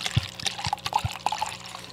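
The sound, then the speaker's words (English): Wine being poured with a two-handed pour into a plastic cup, with a bubbly, gurgling splash, irregular low thuds and bright little glugs over two seconds, fairly loud. “That welcome to the was wine a two-handed pour. Into a plastic cup.”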